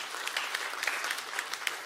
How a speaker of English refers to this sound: Husbands, yeah, you can clap about that.